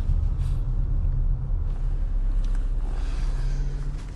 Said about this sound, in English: And I sincerely hope this fire truck is going on the freeway. Oh, they are. Awesome.